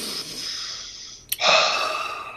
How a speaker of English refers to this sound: I want you to breathe in slowly, okay? Are you breathing? Through your nose. Exhale. Exhale out your mouth. Do it. I'll let everybody hear it.